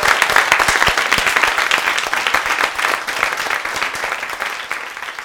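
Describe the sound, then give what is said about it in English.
An audience breaks into loud, sustained applause for everybody who shared that night, a dense patter of many hands clapping steadily for several seconds with no voices standing out. “I want a big round of applause for everybody who shared tonight.”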